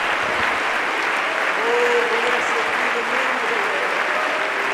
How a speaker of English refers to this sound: Glory to God. Glory to God. Give the Lord a hand clap before you're seated.